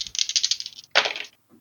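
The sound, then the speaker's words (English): Three dice, one black and two green, rattle together in quick clicking bursts as they are rolled in a game, followed by a louder clatter as they tumble onto a hard surface and settle with a faint final tap. “All right, so you'll get all three dice.”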